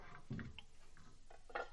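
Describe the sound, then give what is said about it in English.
A handful of quick clinks and clatters, like dishes knocking together, scattered irregularly across a couple of seconds at a fairly soft level with no talking. “But now, time to break out the dishes.”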